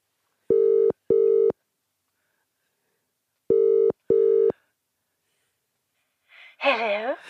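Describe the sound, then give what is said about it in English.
A telephone ringback tone sounds in two distinct double rings separated by a pause, clear, after a number is dialed to phone someone, before a voice briefly answers at the end. “Do you want me to dial the number?”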